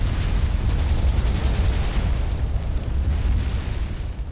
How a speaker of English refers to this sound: The sound of heavy gunfire rose above the roar of more incoming rockets. Then a loud series of explosions rocked the whole area.